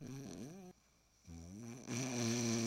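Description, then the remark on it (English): A voice imitates snoring: two raspy, droning breaths separated by a brief pause, the second longer and growing louder, prominent with no talking. “You know when you're sleeping next to somebody who snores and it just like keeps getting louder.”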